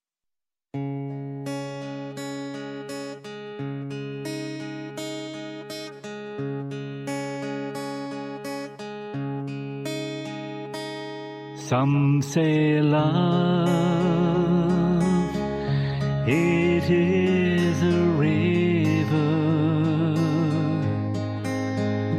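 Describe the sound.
A man sings a slow ballad with warm vibrato over steady piano chords. The piano plays alone for about twelve seconds before the voice enters, full and sustained.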